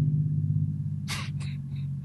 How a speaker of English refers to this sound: Man, these cars. I hate them.